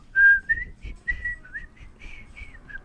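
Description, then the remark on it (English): A person whistles a short, lilting tune of about a dozen clear notes, some held and some sliding, with faint low rumble underneath and no talking. “I always conflate it with Otter's whistle, although his is Peter and the Wolf.”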